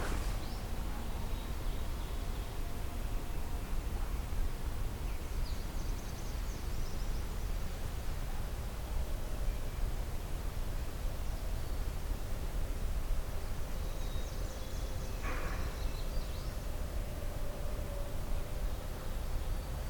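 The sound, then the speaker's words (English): A magnolia warbler sings two short, high phrases on the left, faint against steady, loud rushing noise that fills the whole recording. “All right, we got a magnolia warbler on the left.”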